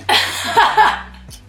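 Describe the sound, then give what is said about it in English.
A single loud burp from a woman lasting about a second, a low rumbling tone under a rough, breathy rasp that swells twice before trailing off. “That was definitely … that burped”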